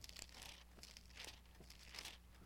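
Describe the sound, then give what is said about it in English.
Thin Bible pages rustle and flip in soft, repeated bursts of papery crinkling as a church audience turns to Luke chapter 11, several overlapping turns with a low steady hum beneath. “I hear all those pages rustling.”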